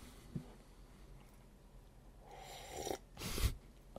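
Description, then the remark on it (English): Someone slurps a drink in two wet, hissing pulls, a longer one followed by a short louder one, with a faint click at the start and no talking. “Sorry, slurping noise.”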